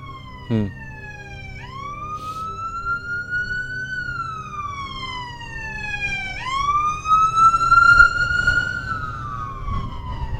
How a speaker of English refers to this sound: It's funny hearing the sirens here, the holographic nature of what we're talking about, you know, showing up.